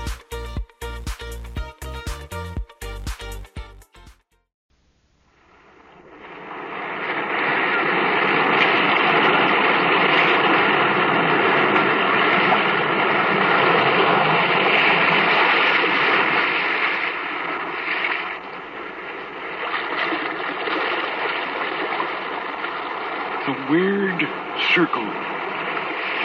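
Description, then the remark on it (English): After a few seconds of music, a loud, continuous roar of crashing sea waves swells up and churns steadily, with a voice briefly heard over the surf near the end. “Restless sea, we are met to call from out of the past stories, strange and weird.”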